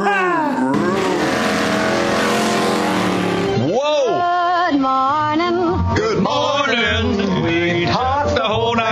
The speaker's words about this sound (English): start your engine.